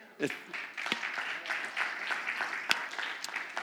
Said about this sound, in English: Yeah, you can applaud at that.